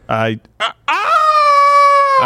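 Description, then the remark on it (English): A person imitates a rooster crowing: two short voiced bursts, then a long, loud, drawn-out cock-a-doodle-doo that holds steady and tapers slightly at the end. “Give us a crow.”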